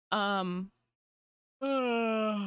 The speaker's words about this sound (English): Man. Sorry, big yawn. I slept on the couch last night, so, you know.